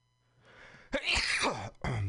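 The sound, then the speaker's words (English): A loud sneeze: a soft breathy intake builds up, then a sharp explosive burst with a voiced tail, followed by a second quick burst. No one speaks. “Bless you.”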